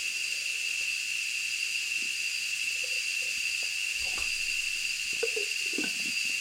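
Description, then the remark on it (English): Loud cicadas buzz in a steady, high-pitched drone that never lets up, with a few faint low knocks and rustles underneath toward the end. “I hope the cicadas aren't too loud, but they make it that I have to basically scream to, like, speak very loudly, even just to hear myself.”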